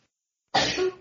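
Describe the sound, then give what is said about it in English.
A single sudden, loud sneeze bursts out after a moment of silence, sharp and breathy, lasting under half a second, with no talking. “Bless you.”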